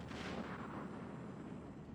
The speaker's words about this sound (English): A muffled thud, the sound of a gun. The fighting was beginning.